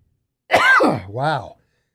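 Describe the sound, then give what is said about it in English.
A single loud sneeze: a sudden noisy burst followed by a voiced, tonal trailing sound, lasting about a second with silence on either side. “My sneeze can be heard in 5 counties without a microphone.”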